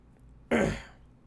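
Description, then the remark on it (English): A single raspy throat clearing bursts out abruptly and fades within about half a second, with no talking around it. “Here I am again, clearing my throat.”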